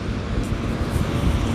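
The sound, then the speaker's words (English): A helicopter flies past overhead, a steady, loud low rumble with a rough, wind-like texture filling the whole moment, no voices present. “That's with the helicopter that fly past by and everything.”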